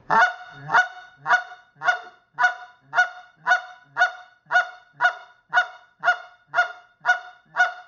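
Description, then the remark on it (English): A steady run of about fifteen short, sharp goose clucks blown on a goose call, evenly spaced roughly twice a second, fairly loud with no talking. “Once you've gotten that, just start working on the clucks.”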